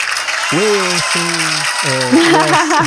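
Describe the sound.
Steady, dense applause fills the whole clip, a continuous crackling wash of many clapping hands, while a voice talks in short phrases over it.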